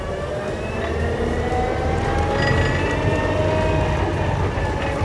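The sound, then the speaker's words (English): A tractor that runs without red diesel, shown at the Low Carbon Ag Show, runs steadily, its loud, continuous low rumble layered with higher whining tones that slowly drift in pitch, with no voices over it. “A tractor, but no red diesel in sight.”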